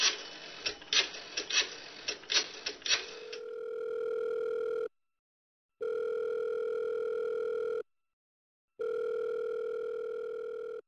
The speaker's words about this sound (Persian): دست پاچه تلفن زدم.